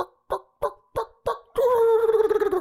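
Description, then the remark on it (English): Five short, evenly spaced yelping notes lead into a loud, rapid, rattling turkey gobble that warbles for about a second. It is clear, with no talking. “Turkey gobbles, or a hen does her stuff.”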